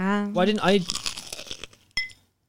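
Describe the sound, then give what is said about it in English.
A brief vocal hum opens, then a loud crunching bite into fried chicken: a rapid crackly burst of crisp breaking noises, ending in one sharp snap. “Wow. That was a crunch.”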